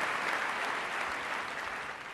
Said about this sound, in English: Harrison Ford has received an honorary Palme d'Or at the Cannes Film Festival, where he was given a career highlights reel and received a thunderous ovation from the crowd.